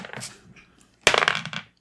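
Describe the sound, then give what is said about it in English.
Dice clatter onto a table with a sharp hit, then tumble and rattle in quick bouncing clicks for about half a second. A soft rattle comes just before. “All right, let's roll dice. We'll just keep going around the table until we run out of shit.”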